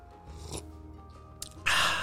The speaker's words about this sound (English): I always have my trusty cup of coffee as I'm doing these. Here, I'll take a sip.